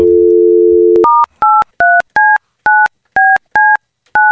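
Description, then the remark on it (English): A steady telephone dial tone hums for about a second, then cuts to a quick series of eight crisp touch-tone beeps as a number is dialed to make a phone call, evenly spaced and loud, with no one speaking. “We got to make a phone call”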